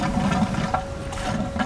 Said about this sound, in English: He works quickly to pump gray water from a manhole into his testing equipment. The sample goes through an electropositive cartridge filter, specifically looking for virus in the sewer, and it captures it on the outside of the filter.